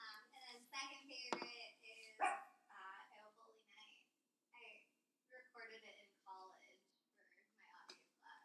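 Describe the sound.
A dog barks sharply a couple of times, fairly loud, while people talk over and around it.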